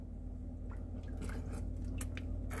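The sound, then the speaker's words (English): Wet mouth sounds of someone slurping and gulping bottled water, a few short squishy sips over a steady low hum, with no talking. “And I do apologize for the slushes and the slurping. I'm having to drink bottled water because, well, it's still hot down here.”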